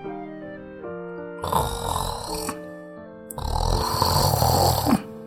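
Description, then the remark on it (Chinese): Two loud, rasping snores from a bear sleeping soundly in its den, one short and one longer, rumble over a steady held musical tone, with a brief pause between them. “除夕到了，第一个到熊洞的是狐狸一家，可宝熊正在呼呼大睡。”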